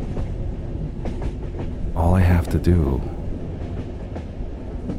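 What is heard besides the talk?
train running on rails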